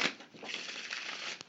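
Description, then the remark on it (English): A deck of playing cards being riffle-shuffled, a fast, continuous papery flutter lasting about a second and a half, ending with a short snap as the cards settle. “So this clip is we're shuffling the cards and we talk a little bit about the origins that I just described, and then we just immediately start gossiping.”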